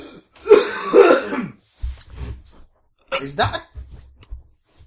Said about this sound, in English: Is that a dog you've just coughed up? God. Fully grown, where were you keeping that?